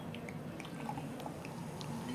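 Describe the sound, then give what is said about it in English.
Eve's Cider Northern Spy cider, the 2015 vintage, pouring into a glass: a soft, steady liquid rush with scattered light bubbling and dripping blips over about two seconds, fairly quiet, with no talking. “I'm just going to pour the 2015 now.”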